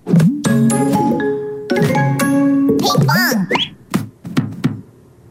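A brief, loud snippet of a children's song: bright, childlike singing over chiming, tinkly instruments for about three seconds, then it breaks off into a few scattered knocks and short sounds.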